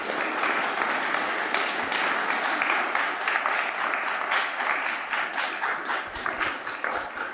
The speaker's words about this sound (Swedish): Och då är det så fantastiskt att vi också har faddrar med oss. Ni får ställa er upp också. Och de får också en applåd, tycker jag.